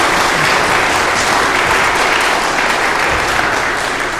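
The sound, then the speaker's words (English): An audience applauds steadily for the choir, a dense, even wash of many hands clapping at a loud, constant level for several seconds with no voices standing out. “Let's give the choir a round of applause for everything they do for us.”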